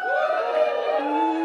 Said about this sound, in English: Give us a cheer if you listen to the podcast, actually. Woo! Ooh, great, great, great. Give us a cheer if you've never heard us before.